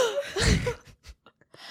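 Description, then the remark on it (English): A loud, breathy gasp, exaggerated as if imitating another person's signature gasp, followed by a few short, soft breath and mouth sounds. “I just hear, like, people be like, they do my gasp.”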